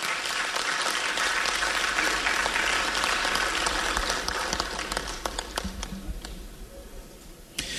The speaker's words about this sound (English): The NCA did not have enough time for this important assignment, and we urge you, the next administration, to take a look at the Secretariat and treat them well. Please, now join me to give them a round of applause.